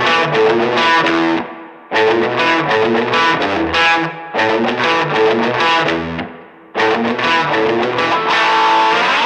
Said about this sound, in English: No way. That's a Fender, my friend.